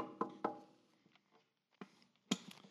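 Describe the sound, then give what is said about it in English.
Sharp knocks on a door by a courier, a pair in quick succession, a couple of softer taps, then two more firm raps after a short pause, fairly quiet with no voices. “Get a knock on the door.”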